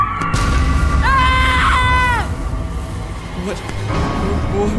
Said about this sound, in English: And when he attacks, he lets out a high-pitched screech, so loud and so shrill, it makes your ears bleed.